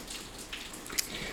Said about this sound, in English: Yeah. I like the rain, man. It's ASMR.